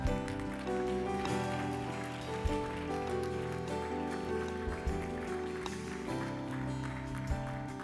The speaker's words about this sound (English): Church, let's give the Lord a hand clap.